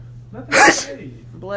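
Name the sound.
sneeze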